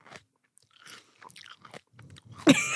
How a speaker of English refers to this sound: just the loudest celery chewing of all time.